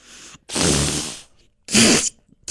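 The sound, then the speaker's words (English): Several loud, breathy bursts of cupped-hand fart noises, two long ones in the middle with a softer one before and another starting at the end, no talking. “Now we're all just farting into our hands.”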